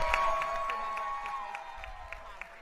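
An audience applauds and cheers for the special guests at the close of a Rat Queens show on HyperRPG, the claps falling into a steady, even rhythm over a sustained murmur of crowd voices, at moderate loudness throughout.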